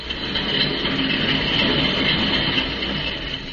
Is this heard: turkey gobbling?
no